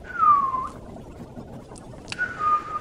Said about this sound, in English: Yeah, see, that's picking it up. So hopefully people will have whistle noises.